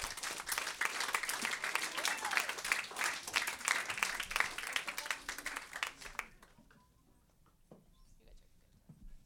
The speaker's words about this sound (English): So really quick, we're going to clap for them, and then we're going to move into prayer, and I'm going to pray.